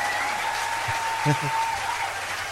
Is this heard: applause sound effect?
yes